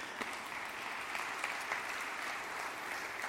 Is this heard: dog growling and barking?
no